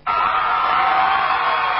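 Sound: crowd of fans cheering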